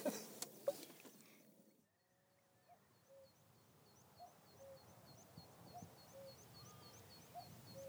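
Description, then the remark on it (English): A cuckoo, the first of the season, gives its soft two-note call several times at a steady pace, while other small birds chirp faintly in a quiet outdoor background. “I heard a cuckoo.”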